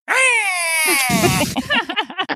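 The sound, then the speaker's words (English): A voice imitates an insect-like caterpillar screech, trying to say hey and thanks but coming out as a screech: a shrill, strained, wavering cry held for about a second, breaking into a raspy burst and then a run of quick chattering squeals. “But it just comes out as an insectoid screech.”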